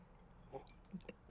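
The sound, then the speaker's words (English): A few quiet, short slurping sips of Scotch whisky from the Scotland Highlands, spaced irregularly over a second or so, with no talking. “A beautiful Scotch whiskey from the Ooh. Scotland Highlanders.”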